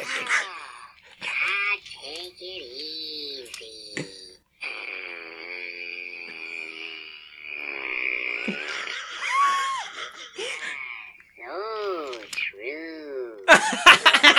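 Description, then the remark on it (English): A Furby electronic toy lets out a long, drawn-out fart noise, a buzzy, wavering drone lasting several seconds, framed by warbling electronic chirps and croaks, with a burst of sharp noise at the end. “That was the longest fart I've ever heard.”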